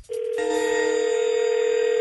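A telephone rings with a steady, bright electronic tone that starts abruptly and holds, fairly loud, with no voices, before the call is answered.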